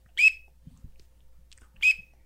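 A teal drake gives two short, high whistling calls about a second and a half apart, each a clear piping note with a slight trill, over quiet background with a soft low thump between them.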